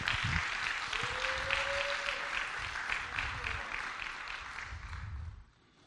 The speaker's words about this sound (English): Oh, come on, give the Lord a good round of applause.